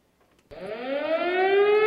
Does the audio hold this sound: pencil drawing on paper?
no